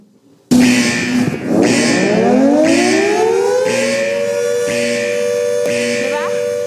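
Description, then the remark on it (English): A loud siren-like code red alert alarm bursts in and wails upward, its pitch sliding from low to high and then holding a steady, piercing tone, with a pulsing beep repeating underneath. “You know that sound? It's a code red sound. It's a code red alert.”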